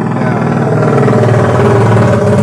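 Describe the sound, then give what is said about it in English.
A motorcycle with a loud, open cut exhaust rumbles, its deep, throbbing engine note steady and dominant throughout the short stretch. “cup chai with the cut exhaust.”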